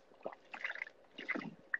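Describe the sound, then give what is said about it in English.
Someone drinking water noisily, with a few wet gulps and sloshing slurps in two short bursts, followed by a brief squeak at the end. No one speaks. “Okay, you're drinking loudly.”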